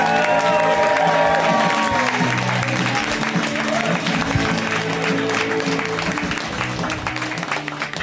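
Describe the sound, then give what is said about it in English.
A large audience applauds steadily to welcome a comedian on stage for the first time, a dense wash of clapping mixed with cheers and indistinct voices, holding loud throughout and easing slightly toward the end. “We make a huge, big, warm round of applause welcome for them.”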